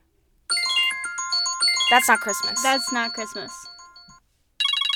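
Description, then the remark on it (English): A bright, melodic phone alarm tone chimes steadily for several seconds while voices talk over it, then cuts off, and a different buzzy tone starts abruptly just before the end, as alarm tones are being picked for a five-minute discussion timer. “Oh, we have to pick the alarm?”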